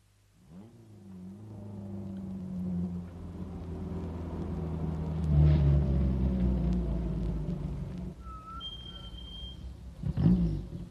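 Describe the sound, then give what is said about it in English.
A car engine turns over and revs, then settles into a steady low rumble as the vehicle drives off, with a brief high tone near the end and another rev. “Okay, I'll get the car.”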